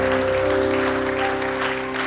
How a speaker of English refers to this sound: Can you give the Lord a clap for free?